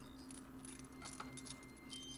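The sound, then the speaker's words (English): A bunch of keys jangles in a steady stream of light metallic clinks over a low, constant hum as the keys are double-tapped and then swiped right, fairly quiet throughout with no one speaking. “So for example, these keys. I double tapped on them, got the description. I'm going to swipe right.”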